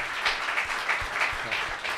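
Steady applause from a crowd for Representative Beth Fukumoto, a dense wash of many hands clapping at once with a few sharper claps standing out in a loose rhythm, sustained at an even level with no talking.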